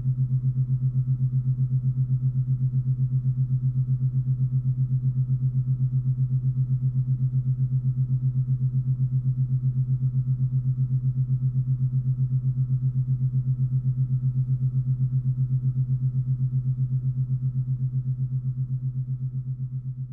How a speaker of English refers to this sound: let's finish off with the sound of Earth. Yes, it is a hum.